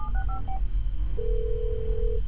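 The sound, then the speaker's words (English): A quick run of touch-tone beeps as a phone number is dialed to call a therapist, followed by a single steady ringing tone on the line, over a low background rumble. “So I called my therapist.”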